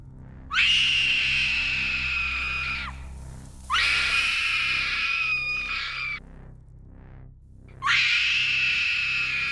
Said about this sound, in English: The monster moved at the speed of lightning, dragging the hapless screaming Seema into the dark tunnel.